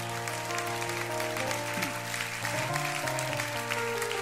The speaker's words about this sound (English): If you received something from the word of the Lord this morning, would you just give the Lord a great clap offering this morning?